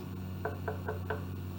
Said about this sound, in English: So now when you go in front of somebody's house, knock. I'll go.